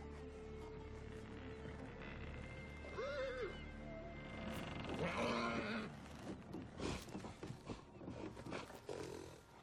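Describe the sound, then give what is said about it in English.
A horse whinnies twice in quick succession, shrill, over a rumbling, chaotic background, followed by a burst of scuffling thuds and clattering movement, in a film scene with a rope around the horse's ankle. “The rope around the horse's ankle, which is a visual effect.”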